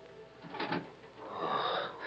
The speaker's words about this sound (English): And the door of the room creaked slowly.